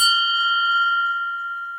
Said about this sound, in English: Sound the bell.